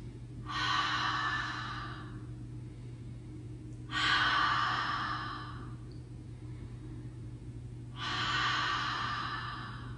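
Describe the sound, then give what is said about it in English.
Three slow, breathy open-mouth ujjayi exhales, also called Darth Vader breath, as if cleaning a pair of glasses, each about a second and a half long and evenly spaced, with quiet pauses and a low steady hum underneath. “It's also known as Darth Vader breath, and we're going to practice it with our mouth open first, and then we'll practice it with our mouth closed.”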